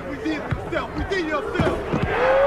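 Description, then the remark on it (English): A basketball bounces on a wooden court, about five hollow thumps at an uneven dribbling pace, with high squeaky chirps and faint crowd noise in the background. “This is the ball when it bounces, the sound that it makes, the smell of the basketball, the nets, when you shoot the ball and it goes right through the net, the sneakers as they squeak on the wood.”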